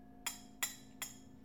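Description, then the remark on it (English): Four light, evenly spaced clinks of a ring tapping a wine glass, each a sharp bright tick with a brief high ringing tone, fairly quiet with no talking. “You know, that's me holding the wine glass.”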